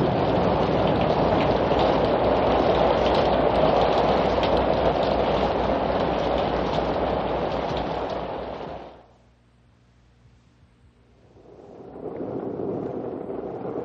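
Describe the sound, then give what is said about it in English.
Steady, heavy rain pours down in a dense hiss for about nine seconds, cuts off abruptly into near silence, then returns more softly as a lighter patter. “Listen. Listen. Rain. Rain. Cool water. Cool air.”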